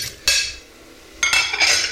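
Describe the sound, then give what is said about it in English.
Dinner plates being lifted out of the lower drawer of a cooled-down dishwasher: two sharp ceramic clinks with bright ringing tails, the second followed by a brief rattling clatter. No one speaks. “Just pulling the lower drawer out. Let's go with the lower drawer first. I'm going to make a quick grab for the plates.”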